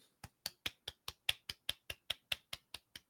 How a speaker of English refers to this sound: Full on golf clap.